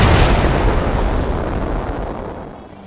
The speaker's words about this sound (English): And as he says this, a huge fist comes crashing through the wall.